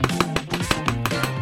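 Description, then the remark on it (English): A quick cartoonish hammer effect: a rapid series of sharp, ringing metallic taps in an even rhythm over a bouncy musical backing, loud, with no talking. “Tool call! Hammer!”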